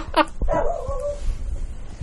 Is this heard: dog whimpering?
yes